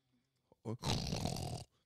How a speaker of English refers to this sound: Holy shit, he's snoring loud. Yeah, he gets louder. He's like a fucking car engine. You just once you start him, he just keeps going. Yeah, it sounds like a tractor motor.